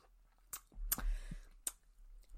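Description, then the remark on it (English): Quiet mouth sounds of someone sipping a tea martini made with gin, vermouth and tea: a few soft slurps and small clicks spread over a couple of seconds, with a gulp in the middle and no talking. “Okay, so I'm going to sip.”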